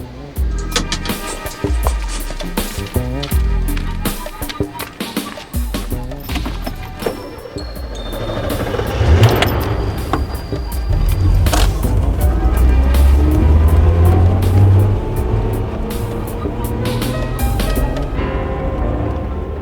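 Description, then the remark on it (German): A taxi's car engine rumbles as it approaches, growing louder and fuller about halfway through, then keeps idling with a steady low drone. It is taxi car 81 pulling up at a gate at Teerosenweg 19 to collect the passenger who ordered it. “Wagen 81. Sie haben mich bestellt.”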